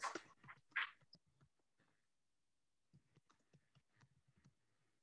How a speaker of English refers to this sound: I was just typing